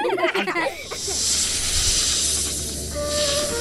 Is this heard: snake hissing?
yes